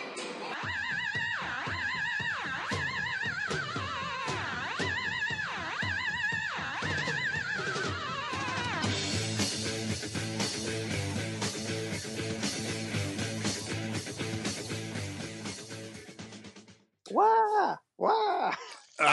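A loud pop rock song by a band, with wailing, whinny-like sliding squeals over a dense, driving backing that cuts off abruptly near the end, followed by a few short bursts.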